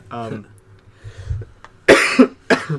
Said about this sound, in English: It's not a sneeze, it's just a cough.